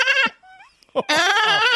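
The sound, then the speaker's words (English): A woman imitates a goat with two loud, wavering bleats separated by a brief pause, the second one long and quavering. “She turned into a goat.”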